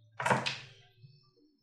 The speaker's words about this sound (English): Six dice.